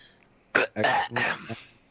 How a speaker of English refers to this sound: No, I was just clearing my throat. No, that was just like a ill-timed throat clearing, and I couldn't reach my mute button.